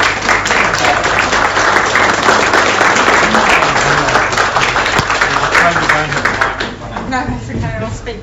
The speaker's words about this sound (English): So a round of applause